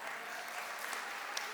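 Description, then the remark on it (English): An audience claps and applauds in a dense, steady patter of many hands, fairly soft and even throughout, with no clear voices standing out. “That was your, that you could have clapped and applauded and gone wild.”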